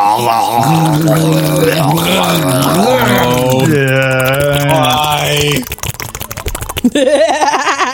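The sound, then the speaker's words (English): A man loudly gurgles saliva in his throat, a long warbling voiced gurgle with wavering pitch, then a burst of wet crackling sputters and a short final gurgle. “Now there was the overwhelming sound of a grown man gurgling his own saliva.”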